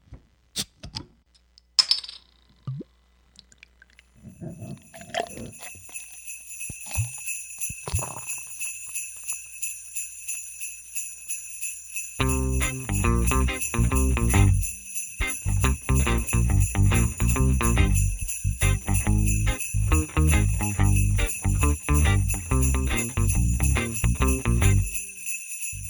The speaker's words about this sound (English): Gentlemen, boys and girls, you hear the sleigh bells, which means it's Christmas time. I get to use that sound once a year.